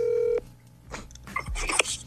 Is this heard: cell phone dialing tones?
yes